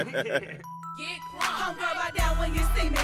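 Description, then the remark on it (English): A snap-style rap beat from the ringtone rap era plays loudly, with sharp handclaps cracking over deep booming bass and bright chiming synth tones, the claps landing in a steady rhythm. “So you got the claps in it for the snap.”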